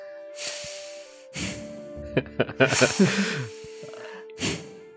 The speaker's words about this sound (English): she takes both of …'s hands and turns to face her and tries to go through a few basic breathing exercises